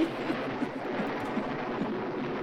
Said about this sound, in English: Insert scary thunder sounds.